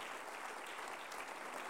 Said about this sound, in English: Come on, give the Lord a good hand clap of praise.